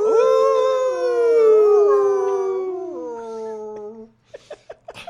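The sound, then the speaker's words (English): Several people howl together like wolves, long wavering overlapping cries sustained for about four seconds before breaking off into a few short, choppy vocal bursts. “Everybody howl.”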